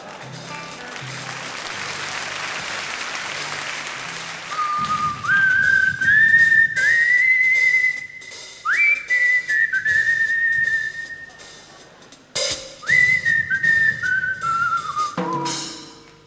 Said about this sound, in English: and he began whistling a tune this time to accompany himself.